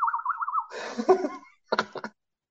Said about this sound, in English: And what the hell was that? My bird noise, isn't it?